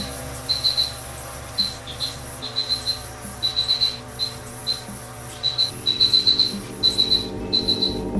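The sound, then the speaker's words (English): A Kihansi spray toad gives high, thin chirping calls in short pulsed bursts, repeating every second or so over a steady rushing background, like falling water or spray. “Instead, males tend to vocalize only when they can see another toad of their species.”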